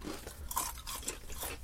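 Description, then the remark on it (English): Quiet chewing of thin potato chips: a run of soft, irregular crunches over under two seconds, with no one talking. “These don't taste like potatoes per se, because maybe because they're so thin, they're not as crunchy.”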